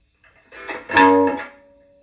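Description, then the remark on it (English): A distorted electric guitar, played through an amplifier's gain channel with the effects rolled off, plays a short, gritty phrase that swells into a loud sustained chord, then fades out, leaving a thin lingering tone. No one speaks. “Let's roll the effects off and hear the gain, and then let's roll the gain off and hear just effects.”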